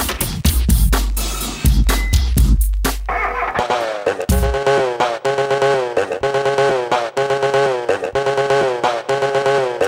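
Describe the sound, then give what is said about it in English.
An electronic track built from chopped chainsaw sound effects taken from the horror films The Texas Chainsaw Massacre and The Shining: loud stuttering bursts of revving engine noise, then a steady rhythmic pattern of pitched, buzzing chainsaw tones played like notes. “it is recreated using sound effects from The Texas Chainsaw Massacre, The Shining, and perhaps one other movie.”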